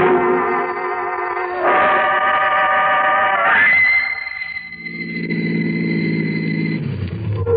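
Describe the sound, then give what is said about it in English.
A car engine hums steadily and steps up in pitch twice as it accelerates, then drops to a lower, rougher drone and winds down as the car pulls in off the highway and stops among trees. “I'll pull in here. Trees will cover the car in case anybody happens to be out late on the highway.”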